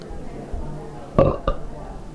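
A short, loud belch bursts out against a low background hum, with a brief second gulp following right after.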